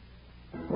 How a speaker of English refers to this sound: Let's go find that wolf. Listen, sounds like he's right over that hill.